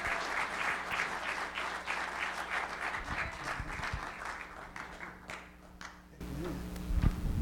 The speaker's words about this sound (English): How many give him some amens, some claps, and some shouts? Amen.